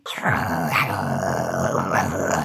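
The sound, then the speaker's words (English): A person imitates a wolf's growl, a single loud, rough, sustained snarl lasting about two seconds, with a couple of rising swells before it cuts off. “Oh, who's a good wolf? You do a good wolf.”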